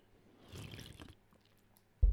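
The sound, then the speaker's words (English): A brief, soft sip of water, with quiet wet slurping and a small swallow, followed by a sudden low thump near the end. “So let me just have another little sip of water here.”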